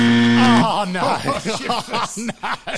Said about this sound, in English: Oh no! I've said my piece. I've said my piece. Right as the buzzer starts.